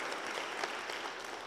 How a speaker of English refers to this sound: by letting it be known by saying amen and applause. So proud of you girls.